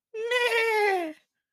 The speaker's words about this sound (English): A horse's whinny echoed through the night.